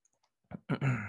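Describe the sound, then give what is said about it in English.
A lighter is flicked to light raw rolling papers: a couple of faint ticks, then two sharp strikes, the last one stretching into a brief rasping burst. No one speaks. “He lighting up the raw papers.”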